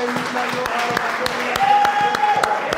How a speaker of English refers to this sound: Let's clap our hands for Jesus Christ.